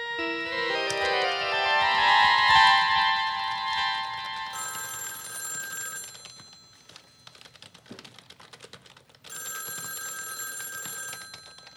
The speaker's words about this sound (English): But the phone is right in front of you. Must we have this conversation every time the phone rings?